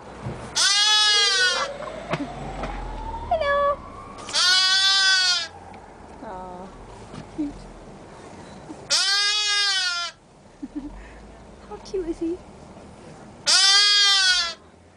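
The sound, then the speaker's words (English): A lamb at a petting zoo bleats four times at fairly even intervals, each call loud, wavering and about a second long, with quiet outdoor background noise in between and no talking. “Yep, sheep. Sheep.”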